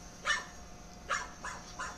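A dog barks four times in short, sharp bursts at sunset, the first two spaced apart and the last three closer together, against a faint steady background hum, with no talking.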